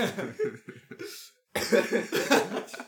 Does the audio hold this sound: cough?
yes